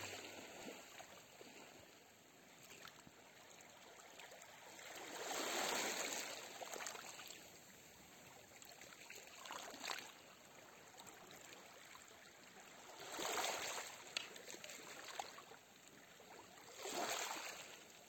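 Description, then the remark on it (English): Gentle water at the beach: soft waves wash in and recede in slow, repeating surges every few seconds, with a continuous quiet trickle and lapping between them, low in volume. “Listening to the sounds of the beach, of the water, the waves.”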